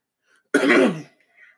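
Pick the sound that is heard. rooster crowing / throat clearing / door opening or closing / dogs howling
throat clearing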